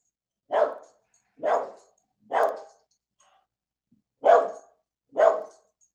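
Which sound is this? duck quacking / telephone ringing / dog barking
dog barking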